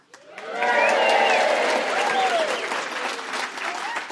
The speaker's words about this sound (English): And all the fairies started to cheer.